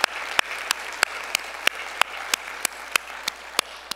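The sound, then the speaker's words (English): Audience applause honoring military veterans, a steady wash of many hands clapping with sharper, evenly spaced claps punching through in a regular rhythm. No voices are heard over it. “And we honor you, commend you, applaud you.”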